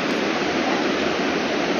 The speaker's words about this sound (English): The sound of the waterfall. Snoqualmie Falls. That is the waterfall, the waterfall.